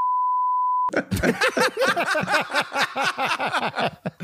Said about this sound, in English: We'll probably have to beep this person's name.